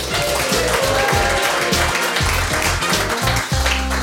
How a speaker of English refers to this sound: Sounds like you've got a bigger cheer than I did.